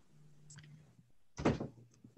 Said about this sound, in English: close that door, please